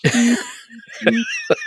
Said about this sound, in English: I was coughing. I thought this was going to be the first time in a month where I didn't have a coughing fit, but I had a coughing fit.